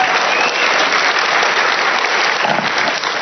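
A church audience applauds the speaker's wife steadily, a dense, even wash of many hands clapping at full volume for the whole stretch, with no voices breaking through.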